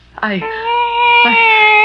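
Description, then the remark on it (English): A cat meows loudly in one long, drawn-out wail that holds a steady pitch, with a brief second cry breaking in partway through. “I can't strangle a cat.”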